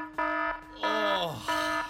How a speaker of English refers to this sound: Send us a WhatsApp, or if you want to imitate an alarm that you actually think is more annoying than this iPhone alarm. Let me get it here.